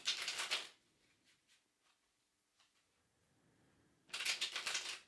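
Tarot cards are shuffled: two bursts of riffled cards, one at the start and one at the end, with soft scattered taps and quiet handling between them; no talking.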